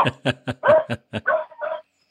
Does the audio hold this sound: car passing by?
no